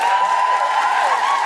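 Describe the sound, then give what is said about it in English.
Steady applause from an audience for comedian Alison Spittle, a dense wash of clapping that holds at an even, fairly loud level throughout with no voices over it. “I'd just like to say a big round of applause to the wonderful Alison Spittle.”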